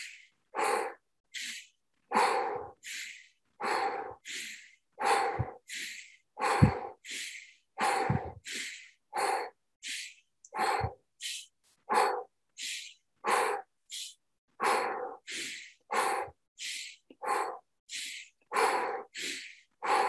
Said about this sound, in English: And so just shutting your eyes, feeling relaxed, and just start breathing in through the nose, out through the mouth. Breathing into the lower belly, pulling that energy up.